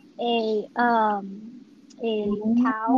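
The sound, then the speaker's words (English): A person imitates a moose call: two loud, drawn-out, nasal bellowing moans with wavering, sliding pitch, separated by a short pause and no words. “let's make a moose.”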